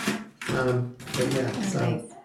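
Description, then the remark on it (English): Crisp, irregular crinkling and rustling of foil being unwrapped to unveil a wine, a Swan Creek from the Yadkin Valley, at a wine tasting, bright and crackly, continuing in bursts under a person talking across the whole short stretch. “If you're hearing the crinkle of the foil.”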